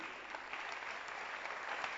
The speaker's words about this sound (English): God, clap your hands for them. They are standing.